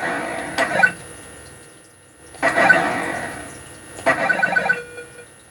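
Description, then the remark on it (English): Three bursts of bubbling water from an underwater video game's screen transition, featuring a scuba diver, each a gurgling rush dotted with quick high blips, separated by brief pauses and played without any talk. “Bubbles on the water when you go from one screen to another.”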